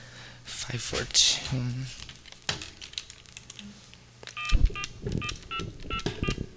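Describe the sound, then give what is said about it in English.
A quick series of telephone keypad tones beeps out as numbers are dialed on an old AT&T phone to call drag queen Miss Monistat in Los Angeles, each short two-tone blip following the last, mixed with button clicks and bits of talking. “Let me get Monistat on the phone.”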